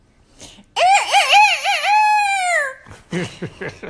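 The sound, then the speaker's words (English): A person loudly imitates an old rooster's crow, one long warbling cock-a-doodle-doo lasting about two seconds, followed by brief talking and laughter. “And the old rooster.”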